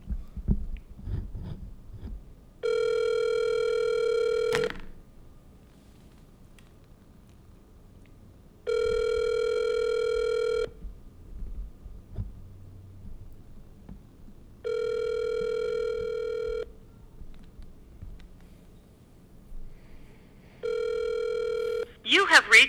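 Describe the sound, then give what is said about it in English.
A phone line's ringback tone purrs four times as a call is placed to a man's cell phone, each steady ring lasting about two seconds with roughly six-second gaps, over faint background noise, the last ring cut short before voicemail. “What, are you calling him? Calling Max Garland.”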